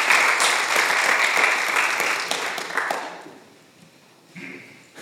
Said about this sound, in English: Can you guys give them a round of applause for coming up and being vulnerable? Thanks, guys.